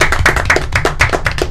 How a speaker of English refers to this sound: Let's give him a round of applause real quick.